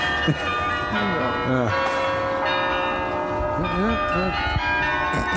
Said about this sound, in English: Right. Well, it was a lovely thought that went into that, isn't it? To have the tribute with the bells. I don't know what song. What song are they playing?